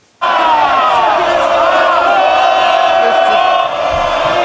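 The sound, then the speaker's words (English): MPs in the House of Commons chamber erupt in loud, sustained cheering and shouting for Rishi Sunak, a dense wall of many voices that starts abruptly and carries on without letup. “That's cheering for Rishi Sunak, of course.”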